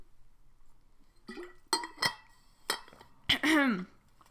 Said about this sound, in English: Gotta drink some water real quick. Gotta hydrate.